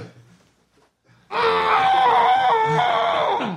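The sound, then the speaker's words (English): After a moment of near silence, one long, loud scream bursts out into a microphone and holds steady for about two seconds, muffled by a thick pillow, then cuts off. “I'm going to get a screaming because I'm feeling a little.”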